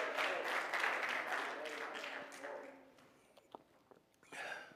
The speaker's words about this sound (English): Oh, let's clap our hands and praise him again this morning.